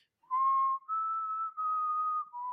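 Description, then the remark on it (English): A clear whistled tune of four sustained notes, each held about half a second with slight pitch shifts between them, played alone with no voices. “And on the howling wind, you hear a whistling noise, a set of notes.”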